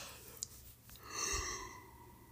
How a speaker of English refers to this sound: I gotta stop yawning. This is annoying me now.